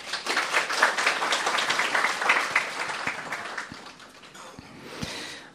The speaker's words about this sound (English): Can we give him a clap?